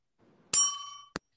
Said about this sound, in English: Oh, we got the bell too. We got the bell. Ding dong.